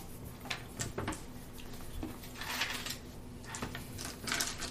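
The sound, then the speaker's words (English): Dice clatter and tumble across a hard surface in several short bursts of rattling clicks, with no voices. “Anytime you roll dice, it's a risk.”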